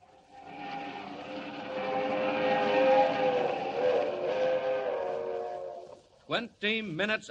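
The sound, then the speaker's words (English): A West Coast Railroad streamliner train roars loudly along the rails up the Rockies through the dark at 80 miles an hour, a steady rushing rumble with droning tonal overtones, before a voice starts talking at the very end. “Roaring up the Rockies to the crossing at San Joaquin, the crack streamliner of the West Coast Railroad rushes through the dark at 80 miles an hour, destined for a watery grave at the bottom of Schooner Canyon Lake.”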